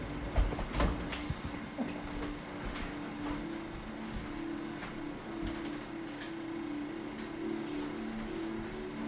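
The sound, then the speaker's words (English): A door is handled as someone checks whether it is closed, with a sharp clunk near the start and a few light clicks and rattles afterward, all over a steady low hum and broad background noise. “I wonder if I forgot to close my door again. Let me check.”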